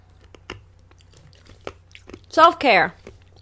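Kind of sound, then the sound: food or drink, person drinking water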